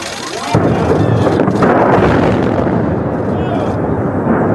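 An old bridge in Kentucky that carried traffic across Lake Barkley for nearly 90 years being brought down by controlled implosion: a sudden loud blast erupts into a heavy, sustained roaring rumble that stays loud for several seconds.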